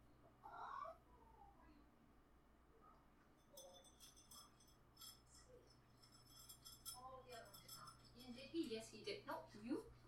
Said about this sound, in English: Oh, and there's some unhappy cats. Hold on. I just need to go and separate them.